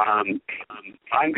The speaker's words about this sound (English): Wow. Yeah, the reverb is still there.